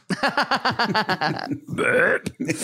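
A loud burp that begins as a rapid, stuttering series of croaky pulses, then gives way to a longer, rougher rasp before cutting off.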